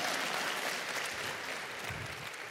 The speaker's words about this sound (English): You can clap for that. Sorry.